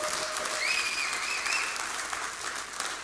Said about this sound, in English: But I want you to give yourself a big round of applause. You know why? You guys are amazing. Come on, just clap your hands.